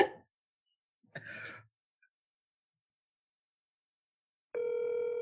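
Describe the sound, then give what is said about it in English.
A steady electronic ringback tone starts near the end, loud as if through a phone earpiece, after two short breathy bursts of noise and a silent pause. “Yep, it's going to be phone tag. I can feel it.”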